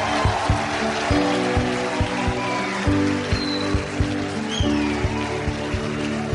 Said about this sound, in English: Come on, palmas para o Senhor. Oh, clap for the Lord.